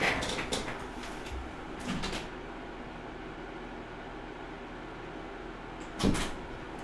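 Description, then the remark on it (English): A door is handled and opened to let a cat out: a few sharp clicks and knocks at the start, a brief rattle a moment later, then a low thud near the end, with quiet background hum between and no talking. “Gotta let this cat out one second.”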